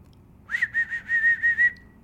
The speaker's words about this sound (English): also, how do you whistle? This is how I whistle.